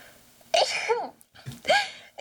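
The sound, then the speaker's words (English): Two sharp sneezes in quick succession, each a sudden loud burst of breathy noise, with a brief pause between them. “God bless you, Sorry.”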